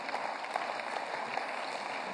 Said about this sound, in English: Give both of these guys a big round of applause.